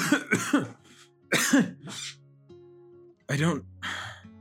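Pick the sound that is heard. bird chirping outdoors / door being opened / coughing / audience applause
coughing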